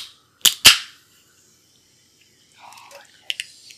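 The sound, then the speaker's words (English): A can of lemon-lime soda cracks open, two sharp snaps in quick succession with a short fizzing hiss, followed after a pause by quieter fizzing and faint clicks. No one speaks. “And crack up my can.”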